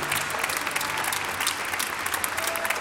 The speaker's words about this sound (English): Man, I wonder if we can clap our hands, give God praise. Praise the Lord.